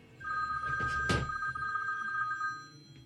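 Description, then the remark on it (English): A telephone rings with a steady electronic tone lasting about two seconds as a doctor calls, clear, with some brief rustling or clunking noises in the background and no talking. “here is my doctor, Dr. Cho, on the telephone with me”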